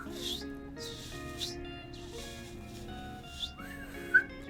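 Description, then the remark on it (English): Someone whistles softly with dry lips, a few breathy, airy attempts ending in a short rising chirp, imitating a little bird's call. “It's like a little birdie.”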